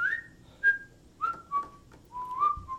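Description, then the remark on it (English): A person whistles a short melodic tune, a series of clear, sustained notes stepping between pitches, fairly loud with no talking over it. “You're a great whistler. You are a really good whistler.”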